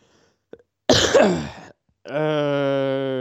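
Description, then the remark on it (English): A single loud, harsh cough bursts out for under a second, then after a short pause a steady, buzzing tone holds for about a second. No one speaks. “Oh god, that cough makes World me of Warcraft.”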